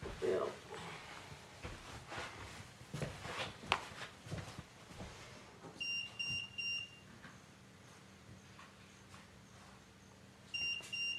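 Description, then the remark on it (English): An electronic meter gives short, high-pitched beeps in quick bursts, first near the middle and again near the end, over a noisy room with shuffling and bumping sounds. “Well, this one beeped over here, then that one beeped over there.”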